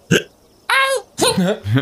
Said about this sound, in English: Oh no, have you got the hiccups?